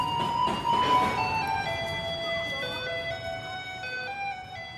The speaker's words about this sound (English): If you live in Taiwan and you hear a truck rumbling down the street playing Fear Elise, it doesn't mean it's time to buy a popsicle. It means it's time to take out your trash. Because this is what a garbage truck in Taiwan sounds like.